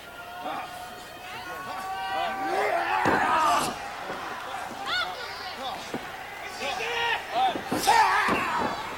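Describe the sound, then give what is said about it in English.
A few heavy, irregular stomping thuds land on a wrestling ring mat as Suzuki stomps on the back of Rude, sharp, while a commentator talks over them and a crowd murmurs in the background. “Release the hole, but continuing to apply more pain to the back of Rude with stomps.”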